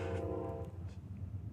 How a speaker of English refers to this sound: I'm not too far from the train here. You might hear the train.